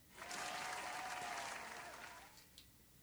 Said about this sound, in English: Wow, that was like the saddest. I know. Applause. A little bit better.